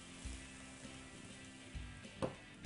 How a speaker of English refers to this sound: Oh yeah. Boiling up real nice now.